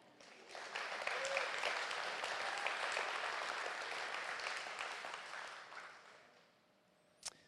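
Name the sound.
audience applause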